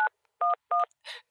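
Three short, crisp telephone keypad tones beep in quick succession as 911 is dialed, each a steady two-note chirp, followed by a brief rough crackle as the line connects. No voices.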